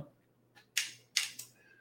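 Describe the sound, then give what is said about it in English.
Sharp mechanical clicks from pedal detents as the pedals are clicked through, two loud snaps about half a second apart with a couple of fainter ticks around them, over a low, steady hum. “I assume that the clicking is part of the whole pedal assembly, so probably when you get replacement pedals, you won't have the little detents that you hear as you click through them.”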